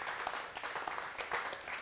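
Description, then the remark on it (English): A church audience claps together for the nine people to be baptized after the service, a steady, dense patter of many hands, a continuous crowd applause holding at an even level throughout without any voices standing out. “So you can clap, but it's good.”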